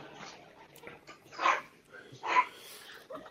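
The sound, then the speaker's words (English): Two sharp dog barks about a second apart, with faint whimpering or yipping and soft background sounds around them. “And their dog's barking.”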